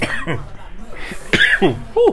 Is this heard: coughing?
yes